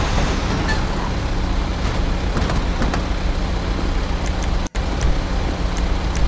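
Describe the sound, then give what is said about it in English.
Continuous road traffic rumbles past, a dense, steady wash of engine and tire noise, with a brief sudden dropout near the end and no talking. “Please put a speed zone up to stop this traffic.”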